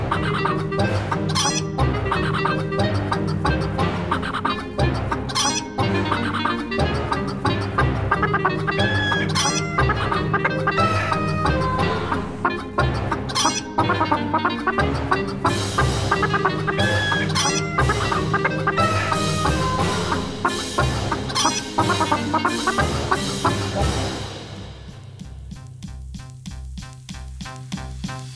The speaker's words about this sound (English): is a test of character if you like chicken opera